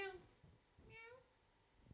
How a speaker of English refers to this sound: Because we have a special guest with us today. Kitty, say hello. Say meow.